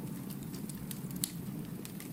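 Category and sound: nature, campfire crackling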